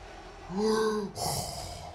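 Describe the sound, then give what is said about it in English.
A heavy breath in a movie trailer: a raspy, slightly tonal draw of air followed by a long, hissing exhale, loud and alone with no talking. “So we're right about the breathing, just the breathing.”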